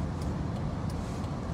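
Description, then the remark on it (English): Steady, dense rumble of road traffic at a turnaround in Coutts, Alberta, with a few hundred cars and trucks passing continuously in a low, broad roar and no distinct gaps. “But you can see the number of cars coming back on the other side, as well as the cars that are here.”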